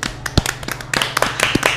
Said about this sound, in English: everybody just really needs to give them a round of applause because it is not an easy job.